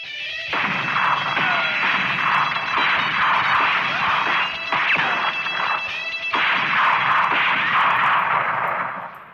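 Loud, sharp gunshot cracks from the BBC sound library burst out repeatedly over a dense, roaring wash of noise and tones, filling the whole stretch with a chaotic, battle-like din.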